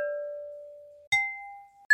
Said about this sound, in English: And then I took three different glass bowls from the kitchen and I dinged them with a wooden mallet. And here are those sounds.